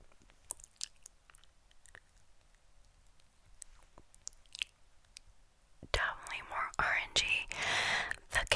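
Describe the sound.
Soft, sparse wet mouth clicks and smacks tick irregularly over near-silence, then a breathy whispered voice comes in, hissy and intimate, with more moist mouth sounds mixed through it, while lipsticks are tried on for ASMR.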